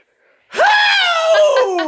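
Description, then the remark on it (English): After a brief silence, a single loud vocal scream bursts in, jumping up in pitch and then sliding slowly downward as it holds for over a second: someone imitating a song's scream. “I love that scream, though. Can you do it?”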